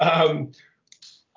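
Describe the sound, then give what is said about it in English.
A voice speaks briefly, then two or three small, sharp clicks of a mechanical pencil follow in quick succession, fairly quiet. “No, I'm playing with a mechanical pencil.”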